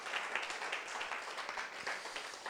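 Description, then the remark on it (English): A crowd claps steadily to give God a big hand during a religious service, a dense, continuous wash of applause, with many overlapping hand claps forming a bright, sustained patter and no clear rhythm. “Come on, let's clap. Let's give God a lot of big hands.”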